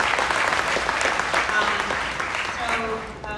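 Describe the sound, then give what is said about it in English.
An audience breaks into a sustained round of applause, a dense, steady patter of many hands clapping at an even loudness, with a voice starting to speak over it as the clapping tapers at the end. “So we got a round of applause.”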